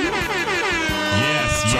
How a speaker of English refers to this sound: Y'all don't get my fucking air horns, man. Get this shit playing.